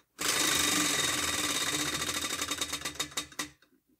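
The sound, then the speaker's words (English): A prize wheel spins with a fast, dense rattle of clicks that gradually slows, the individual ticks spreading apart before it stops after about three and a half seconds. “Spin the wheel one last time.”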